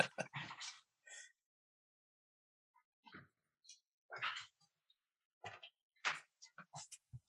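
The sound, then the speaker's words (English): A dog waiting to be let downstairs whimpers and yips in short, high-pitched bursts, a few clustered cries separated by brief pauses, moderately loud. “I got to let one of these dogs to go downstairs.”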